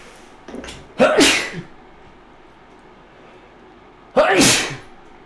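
Two loud sneezes about three seconds apart, each a sharp explosive burst with a quick breathy onset, separated by quiet; a faint sniff or breath precedes the first.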